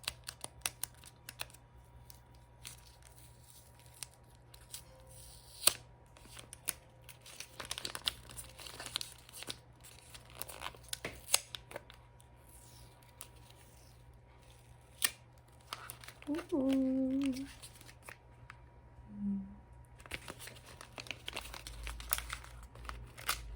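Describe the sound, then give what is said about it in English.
Wrapping paper crinkles and rustles in bursts of sharp, scratchy crackles as a present is unwrapped, with a few louder rips and crumples over a steady low hum. “Okay, I think we're just gonna have to go in and rip it.”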